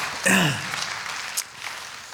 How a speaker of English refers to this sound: Yes, I hear that applause. Yes.